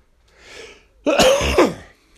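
A soft breath in, then a harsh throat clearing that breaks into a rough cough with two raspy bursts, no talking around it.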